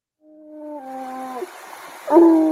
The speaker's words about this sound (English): If you don't know that sound, that's a blue tick coonhound.